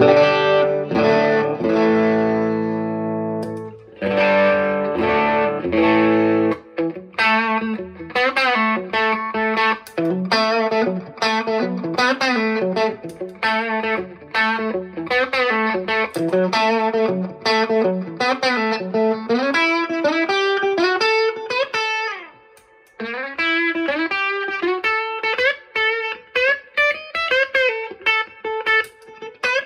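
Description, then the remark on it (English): Distorted electric guitar played through a Mostortion distortion pedal and Echo Park delay pedal into a Tone Master amp, with echoing delay, plays a continuous melodic passage of sustained notes and quick runs, loud, with a brief pause near the end before resuming; no talking. “So I'm going to put the Mostortion on and some delay from the Echo Park and just play a little bit.”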